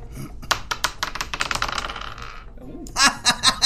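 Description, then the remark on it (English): Dice clatter across a tabletop during a tabletop role-playing game, a roll that comes up a critical fail, in a quick run of hard, rattling clicks that slow and settle, followed by a few short, excited vocal bursts. “That's a roll on the table.”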